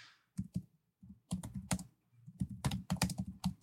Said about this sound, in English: Is this typing interesting? Is it?